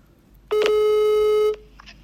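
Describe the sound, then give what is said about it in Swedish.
A single telephone call tone sounds while redialing to call a mother back: one loud, steady, slightly buzzy beep lasting about a second, then cutting off to near silence. No one speaks. “Vi provar ringa upp dig igen, mamma.”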